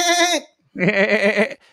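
A goat bleats twice, a short wavering cry followed after a brief pause by a longer, louder quavering bleat.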